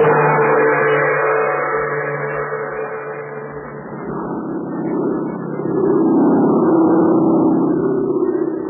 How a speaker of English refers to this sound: Of a plane flying through the blackness of the China night brought Terry and Pat Ryan a new problem.